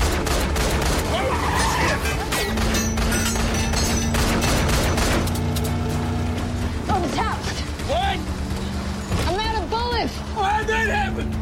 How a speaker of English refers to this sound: So they escape. We're in a car chase. She's shooting bullets.